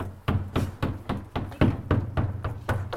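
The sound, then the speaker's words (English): A dog named Hob bangs his tail repeatedly against a dustbin, about ten fairly steady, hollow thumps over a few seconds, moderately loud, with no voices. “That was Hob banging his tail. Yeah. Rather frighteningly, like Wagner against the dustbin.”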